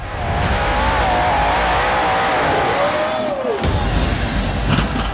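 Loud sprint car engines roar past during a USAC National Sprint Car Series race at Kokomo Speedway. A high revving whine slides down in pitch as a car passes during a crossover slide job on Kevin Thomas Jr., then another burst of engine noise joins in, continuous and harsh.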